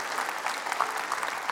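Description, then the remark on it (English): A church audience at Woodlands Church claps steadily in a dense, even wash of applause for the Lord, with a few brief cheers rising above the clapping. No speech is heard. “Let's just first give the Lord another cheer, another clap.”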